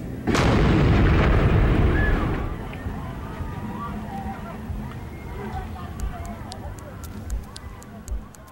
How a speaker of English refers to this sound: Then at 1:20 a.m., as law enforcement contemplated a full evacuation, the homemade pipe bomb, spiked with nails and screws, exploded.